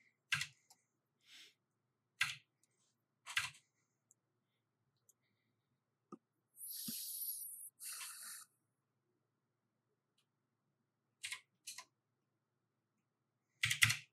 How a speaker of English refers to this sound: Why do you abuse your keyboard like this? It's just clicks, boy.